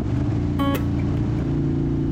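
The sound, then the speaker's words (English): A motorcycle riding back to Warsaw, Poland, through green forests, its engine holding a steady, loud low rumble with a brief higher-pitched whine rising over it early on, then settling back into the even drone. “Just over 2.5 hours spent on the motorcycle back to Warsaw today, riding through green forests.”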